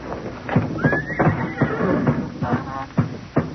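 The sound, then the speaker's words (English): Horses tied in their stalls in a barn whinny and snort, one rising high-pitched neigh standing out, while hooves shuffle and thump irregularly on a hard floor. “All those old nags tied up in their stalls?”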